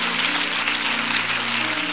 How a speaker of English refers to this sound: I wonder if before you're seated, you clap your hands to the Lord one more time. Come on, clap your hands, all your people.